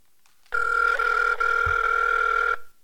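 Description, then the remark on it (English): One telephone ring tone as Rick Thorne places a call for the Rick Thorne Show, a steady, fairly loud electronic purr lasting about two seconds before cutting off. No one speaks. “I'm going to give him a call right now.”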